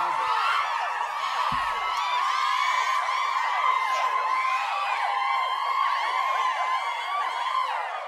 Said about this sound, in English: Canned applause. Hand applause for something. Let's just put some applause in.